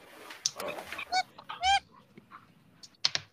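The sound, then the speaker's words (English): A duck squeaks in a few short, honking bursts, two longer squeaks in the middle and sharper chirps near the end, with no talking. “Tell that duck to stop squeaking.”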